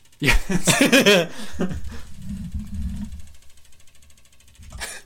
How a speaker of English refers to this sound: I don't know if y'all can hear that, but there's a weird-ass clicking going on.